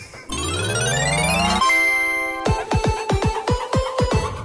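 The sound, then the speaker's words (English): A rising, sweeping tone gives way to a steady ringing note, then a bell is struck about eight times in quick, even succession, each hit ringing out brightly. No one speaks. “We hit the bell.”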